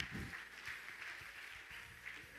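A crowd claps their hands together in a steady, dense burst of applause, a continuous crackling wash of many overlapping claps with no voices standing out.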